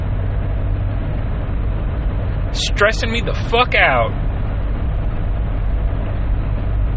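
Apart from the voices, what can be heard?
car driving on road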